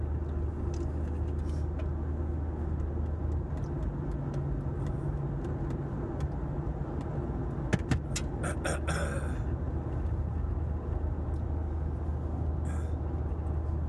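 Steady low rumble of road noise inside a moving car, a constant engine and tire drone with occasional brief clicks and rattles, no talking.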